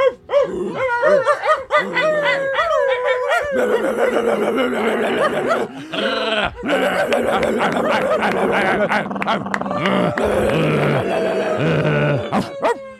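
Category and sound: vocal imitation, people imitating dogs barking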